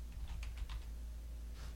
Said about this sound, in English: I'm just typing a search for the word leaks in this article.